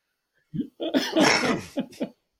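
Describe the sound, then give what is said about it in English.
A short fit of coughing from a person getting over a sickness: a small initial cough, then a longer harsh, raspy cough followed by two quick sharp coughs, fairly loud, with no talking. “I'm just getting over a sickness, and you're going to make me cough.”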